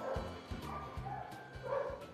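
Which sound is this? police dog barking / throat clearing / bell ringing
police dog barking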